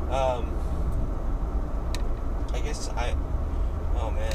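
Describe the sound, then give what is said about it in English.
A steady, low rumble of a car moving along at an unhurried pace in slow traffic, about 35 in a 50 speed limit, heard from inside the cabin, with a few brief voice sounds over the constant road noise. “Traffic. It's not that traffic's bad, it's just that these cars are driving super slow.”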